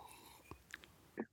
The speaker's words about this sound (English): There's something in this coffee I'm not really thinking right. No, I'm just kidding. Take a sip to that one.